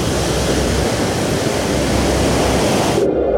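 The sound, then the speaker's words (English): A loud, steady roar of rushing water, like a wave flooding in, fills the space for about three seconds before the bright hiss cuts out, leaving a muffled low rumble. “The force of the wave hurled me into a bulkhead.”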